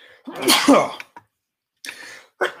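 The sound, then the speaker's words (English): A loud sneeze with a voiced lead-in and sharp breathy burst, followed after a short pause by more breathy bursts as another sneeze begins. “Excuse me. Bless you.”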